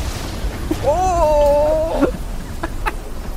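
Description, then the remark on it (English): A wind sound effect named "fierce wind": a wavering, tonal howl rises and holds for about a second over a steady low rumble, then fades, with faint clicks afterward. “What, do you want to hear a fierce wind?”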